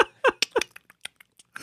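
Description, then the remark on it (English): A voice imitates keyboard typing with mouth clicks and clacks: a few louder, breathy bursts at first, then a sparse, uneven string of quieter taps before a final rougher burst. “Do you hear this incredible keyboard sound effect I can do?”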